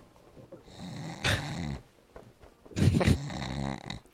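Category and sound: vocal imitation, voice imitating loud snoring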